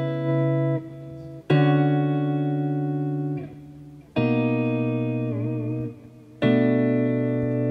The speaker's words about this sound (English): And so I talked to Frank over at Line 6, and he really hooked me up. And I really like the stuff. It's got all kind of delays from every delay that they've ever made is in this box. So, you know, I just like it real subtle.